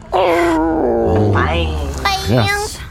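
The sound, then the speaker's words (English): A person howls like a wolf in the midst of Fangwoods, a loud, wavering vocal wail that rises and dips in pitch over about three seconds, breaking into a few drawn-out moaning swoops. “Sweden howls once again in the midst of Fangwoods.”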